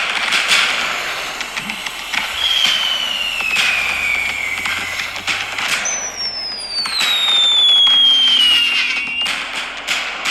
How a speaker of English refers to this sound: So we've got a little bit of firework, a few bangers going off, a few Catherine wheels.